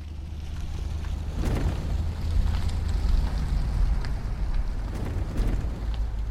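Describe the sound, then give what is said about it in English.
A heavy truck engine rumbles steadily, a loud, deep idling drone with some gusty hiss over it and no voices. “I found this really great truck sound via my trusty old friend, the website freesound.org”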